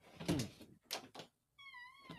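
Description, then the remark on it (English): A door squeaks as it opens: a few soft knocks and rattles, then a thin, wavering high-pitched squeal from the hinge, fairly quiet. “we hear the squeaking door.”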